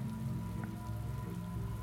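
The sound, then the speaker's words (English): Water drips and patters steadily over a low, constant hum, with one slightly sharper drop standing out briefly among the soft, continuous spattering. No voices are heard. “Pigs continues to get louder and louder around him, till finally it gets quiet again, and all you hear is dripping.”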